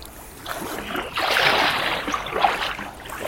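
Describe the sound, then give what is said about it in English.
Water swishes and splashes in a broad, steady wash, swelling in the middle with a few sharper splashes, as a canoe is paddled through calm canal water. “Actually, we are not taking on water, I think.”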